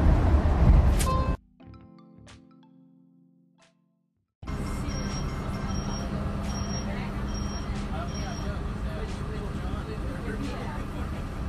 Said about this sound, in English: I'm a commuter. Every day I listen for the sounds of the streets to warn me about cars and the sounds of the subway.